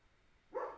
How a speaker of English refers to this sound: It's staying in there, Gorman, baby. Stop barking. He does this thing when he goes out to do a wee. He'll do some preemptive barks.